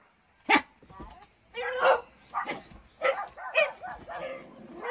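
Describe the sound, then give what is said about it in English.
A string of loud barks in uneven bursts, some from a dog and others from a person imitating a dog's bark, with no ordinary speech. “One of those sounds is a dog barking, and one of them is a human barking.”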